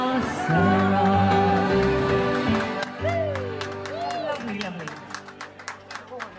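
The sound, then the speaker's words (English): A large, loud crowd fills O'Gorman's pub in Bourne na Cruithe on New Year's night with cheering and raised voices, and scattered clapping breaks out over the din toward the end. “Massive, massive crowd.”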